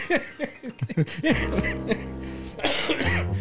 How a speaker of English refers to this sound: I almost made it the whole show without coughing. Right. Yeah. That was my fault.